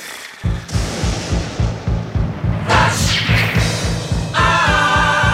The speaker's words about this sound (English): The thunder and the lightning indicated it's time for flash answers.